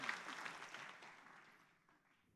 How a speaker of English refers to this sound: Come on, let's give God a good clap offering. Shall we do that?